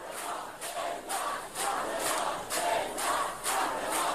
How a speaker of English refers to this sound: It may have been 5 in the morning when Rakabi's plane touched down at the Tehran airport, but that didn't stop a huge crowd from gathering to welcome and cheer her on.